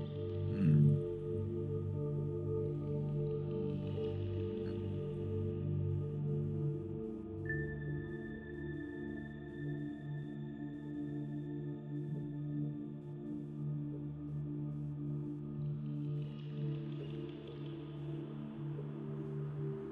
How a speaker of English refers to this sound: Breathe in. Hold it, hold it. And breathe with the hum.